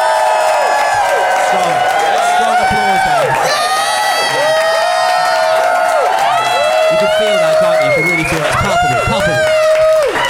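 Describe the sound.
A live audience in Phoenix applauds and cheers loudly and steadily for about ten seconds to vote on a debate, with dense clapping under a mix of whoops, shouts and excited high-pitched voices.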